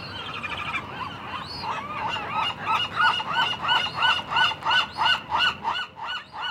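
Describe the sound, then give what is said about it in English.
Nesting birds call in a steady run of loud, harsh honks, about a dozen in quick rhythmic succession, building from scattered calls into a regular pulsing series, with no talking. “We know that these birds started here to nest in 82, but they were actually scouting the area about 5 years before that.”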